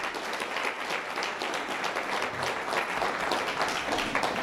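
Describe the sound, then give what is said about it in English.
An audience at a Grange Hall applauds steadily for long-time members, a dense wash of many hands clapping at once that holds an even, fairly loud level throughout with no voices standing out. “So let's give a round of applause to these folks who have been there since then.”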